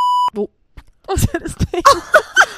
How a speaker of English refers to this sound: You want me to beep it out? Yeah, you're gonna have to beep his name out.